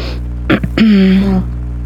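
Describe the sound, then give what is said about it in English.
A single forceful sneeze: a quick breathy catch, then a sharp burst that trails into a short voiced tone, heard alone over a low steady background hum. “Excuse me. Bless you.”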